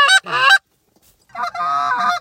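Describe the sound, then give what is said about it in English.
Ducks calling near a duck blind: two short, nasal quacking bursts, a brief pause, then a longer, loud, raspy run of calls. No one speaks. “We got three ducks doing it good.”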